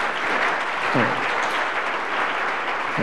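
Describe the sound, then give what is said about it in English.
An audience claps for the Lord steadily, a dense, continuous wash of many hands with no clear individual beats, holding an even loudness throughout while a voice briefly rises near the middle. “I thought you'd be clapping for the Lord at this time.”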